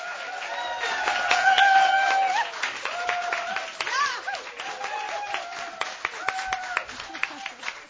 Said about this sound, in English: Welcome to WXPR's White Pine Room, and a great performance we're ready for tonight with Bobby Bullitt. Everyone give a warm applause for Bobby tonight.